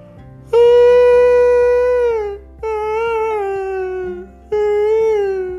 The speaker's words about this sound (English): What is that? Jake had never heard a sound like that before. Oh my gosh, it's a baby seal.